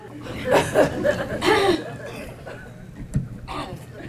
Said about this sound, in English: How many times are you gonna clear your throat